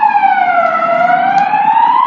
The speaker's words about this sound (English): Okay, you probably heard that siren. I'm sorry about that.